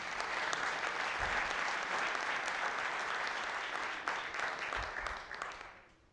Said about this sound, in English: Unfortunately, he's not here tonight, but in absentia, let's just give Pat a round of applause.